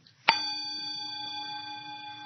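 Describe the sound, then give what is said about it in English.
A single meditation bell is struck once, giving a sharp metallic attack that settles into a long, steady ringing tone with clear overtones, sustaining without fading much. “As soon as we put a concept of ear, of body, of bell, of self,”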